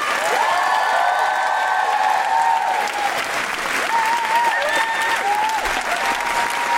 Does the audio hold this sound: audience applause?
yes